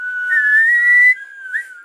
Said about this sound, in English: Can you whistle?